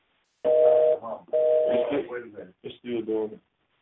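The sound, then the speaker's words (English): Two steady, buzzing electronic tones sound through a narrow, tinny phone line, each lasting about half a second, followed by muffled, garbled voice-like noise on the same line. “But that was interference. It's still hooked up.”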